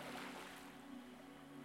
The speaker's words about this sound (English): And just take a few moments to do this now as you hear the waves.